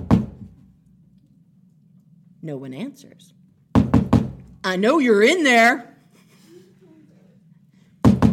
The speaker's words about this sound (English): So my husband goes over to that, and he starts pounding on the door.